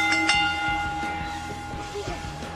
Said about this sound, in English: Ring the bell.